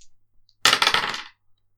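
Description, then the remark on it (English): Two dice are rolled in a board game, clattering and tumbling across a hard surface for about half a second, a bright rattling burst of clicks, then stopping abruptly into quiet. “So I roll 2 dice. Yeah, you roll 2 dice.”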